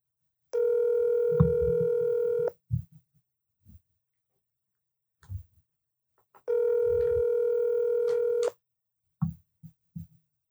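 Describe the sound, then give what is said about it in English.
Two long, steady ringback tones from an outgoing phone call, each about two seconds with a pause between them, with faint low thumps and handling noise around them and no talking. “The anticipation of the phone ringing and you looking just like an iPhone sitting on my fucking coffee table next to the microphone.”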